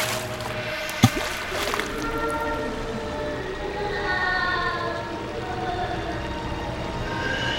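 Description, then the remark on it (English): Water splashes and churns as someone who has thrown themselves into a river struggles, opening with one sharp slap of a splash before turning into a steady, agitated sloshing. No voices are heard. “Why did you throw yourself into the river?”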